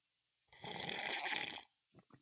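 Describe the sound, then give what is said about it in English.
A long, loud, exaggerated slurp of coffee from a coffee cup lasting about a second, wet and noisy, followed by two short soft sounds like a swallow or gulp. “on the TV shows, you can see the guests pick up the coffee cup and drink it. And I'm trying to avoid that slurping part sound.”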